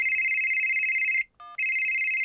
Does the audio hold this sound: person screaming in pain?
no